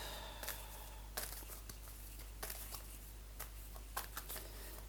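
A deck of oracle cards being shuffled by hand for a card reading, soft papery slides and quick riffling bursts coming at irregular intervals against a faint steady hum, with no one speaking.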